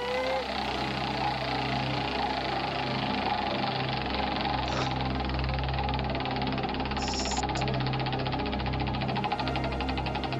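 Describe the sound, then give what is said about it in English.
A game-show prize wheel spins to pick which team member will help a contestant, with a dense, rapid run of ratcheting clicks over a steady rumbling whir, loud, continuing throughout with no one speaking. “Let's spin the wheel”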